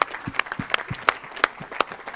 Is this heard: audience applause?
yes